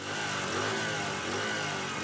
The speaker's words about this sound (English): After filling our stomachs, we Kampalans head back out into the busy traffic to get to our next appointment or just to start the long journey home.